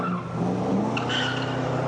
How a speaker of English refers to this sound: I'm going to be your driver today. This car usually drives itself.